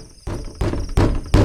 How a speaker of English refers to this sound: Carlos jumps out and runs to the door, really excited. He starts knocking and banging on the door.